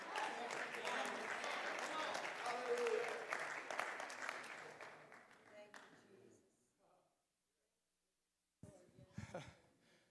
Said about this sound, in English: I appreciate the hand clap, but he said, I will heal your land.